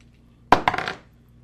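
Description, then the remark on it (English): Dice clatter across a hard tabletop during a tabletop role-playing game concentration check, a sharp first hit followed by several quick rattling bounces that settle within half a second, fairly loud with no talking; the roll comes up 8. “What'd you roll on the dice? 8 on the dice.”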